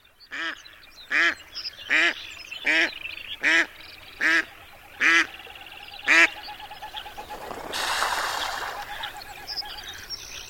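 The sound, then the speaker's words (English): A duck on a pond quacks loudly, about eight harsh, evenly spaced calls in a steady rhythm, followed by a brief rushing splash of water as the calls stop. “While ducks, landing on a pond, use a combination of raised wings and a bit of hydroplaning, like water skiing on their wide, webbed feet.”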